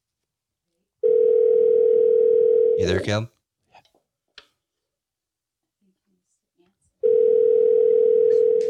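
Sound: telephone dial tone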